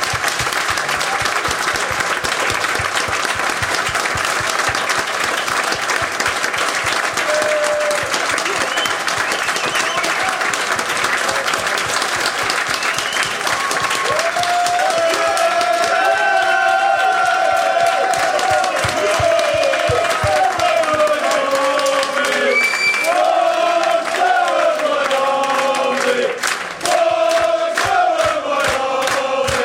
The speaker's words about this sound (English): We had administration, we had so many bad years, and you came along and you gave us a reason to be happy, and I think everyone should stand up and applaud this man for what he's done for QPR.